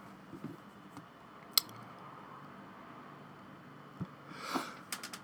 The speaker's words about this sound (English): Shit, I'm so sorry. I'm sneezing now.